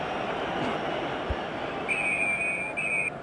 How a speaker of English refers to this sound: Referee blows for half time.